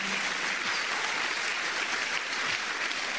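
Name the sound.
audience clapping applause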